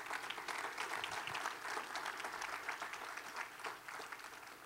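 Applause from a large church audience, a dense, steady wash of many hands clapping at once that holds evenly throughout, with no speech over it.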